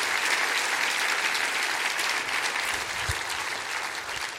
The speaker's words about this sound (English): Would you clap your hands and say, I love that.